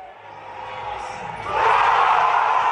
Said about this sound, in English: Here's the roar yesterday from Circa. Listen to how loud it is.